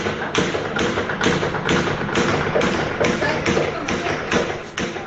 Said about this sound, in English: I can hear the sound, and there's gunfire all over Kabul. I don't know what is the reason. I'm so badly frightened, I cannot explain to you. It's not easy in this condition. There are just gunfire, there are bullets. I can see the bullets.